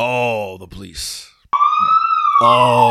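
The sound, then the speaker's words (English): A loud police siren wails with steady, gliding pitch, cuts out briefly with a short break and a noisy burst, then resumes its bright, sustained tone. “So sloptastic maneuvers causes the alarm to be triggered and shit goes tits up.”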